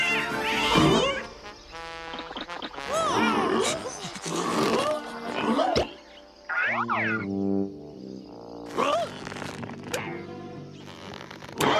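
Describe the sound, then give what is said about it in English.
Cats snarl and meow in a loud, agitated run of yowls and hisses, several overlapping cries rising and falling, with brief gaps between bursts. “Here in this swamp, you will learn the secret of Moonscar Island as our heroes battle the forces of darkness and, worst of all, cats.”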